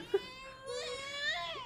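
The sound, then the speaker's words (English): A baby boy cries in a thin, high-pitched wail that starts with a short whimper, then swells into one long, wavering cry with a rising and falling pitch. No one speaks over it. “Not when he's crying.”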